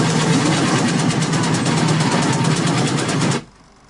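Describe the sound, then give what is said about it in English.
Sustained automatic gunfire from a movie soundtrack at the 27:54 mark, played at reference level and filling the room: a dense, loud, rapid stream of shots that rattles on without pause for a few seconds before cutting off abruptly. “Let's jump ahead to 27:54, and wow, this gunfire.”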